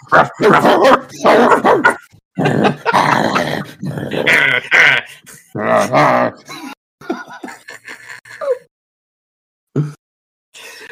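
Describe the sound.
Several people imitate dogs with their voices, trading loud barks, yips and growls in rapid bursts, then trailing off into a few quieter vocal noises and a short final yelp.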